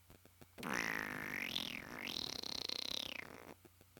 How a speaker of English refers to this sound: That's just what he does. He just records videos of himself, just face on, of him farting.